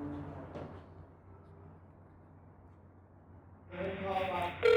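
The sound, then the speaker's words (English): A phone's ringing tone plays through a speakerphone as a call is placed, starting abruptly near the end as a loud, steady, tinny tone after a quieter stretch with a brief voice at the start. “Calling. I'm calling him.”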